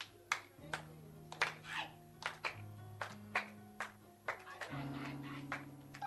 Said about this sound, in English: You are clapping or you are trying to celebrate?